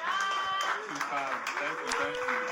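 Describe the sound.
Applause from a crowd, steady and fairly loud, with scattered claps mixed in among cheering and voices calling out across the room.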